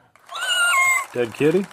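A single drawn-out, high-pitched cat meow, loud, followed right after by a short burst of lower human vocal sound.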